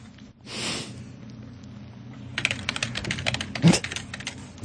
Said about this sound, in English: Hold on, listen for the typing.